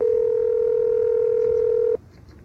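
A telephone tone during a call: one steady, mid-pitched electronic tone holds for about two seconds, then cuts off abruptly into faint hiss. No voices.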